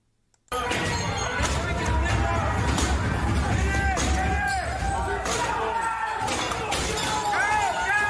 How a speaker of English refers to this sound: Here they are. Here are the patriots breaking out the fucking windows.